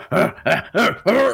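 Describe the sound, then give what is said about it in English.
A voice imitates the grunts of Giant Ape Stanley as he runs, leaps and lands on top of a car where an orc is: four loud, throaty voiced bursts in a steady rhythm, each rough and low-pitched with a slight rise and fall, and no other talk. “A sound when he leaps, right?”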